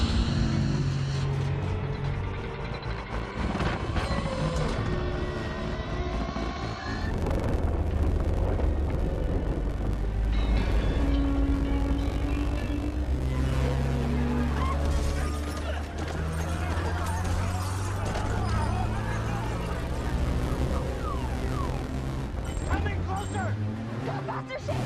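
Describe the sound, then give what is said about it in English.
A loud sci-fi effect of an alien ship sucking everything up: a heavy, buzzing low-end rumble with swirling, sweeping electronic tones above it, running continuously throughout. “I cranked this up to minus 6 just because I really wanted that extra crunch on the end of it there, especially that sound effect with the alien ship sucking everything up.”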